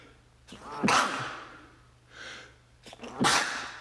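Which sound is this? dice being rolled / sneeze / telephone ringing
sneeze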